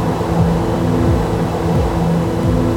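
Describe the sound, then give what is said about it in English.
A passing skytrain rumbles steadily in the distance over the quiet hum of a city on a warm evening, its low rattle and scraping drone layered with whining motor tones that slide up and down in pitch. “The quiet hum of the city is only interrupted by the distant rattle and scrape of the passing skytrain.”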